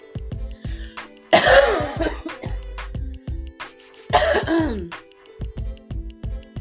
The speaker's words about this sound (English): Excuse my cough, and it's from hay fever, so, you know, please don't take it, you know, personal.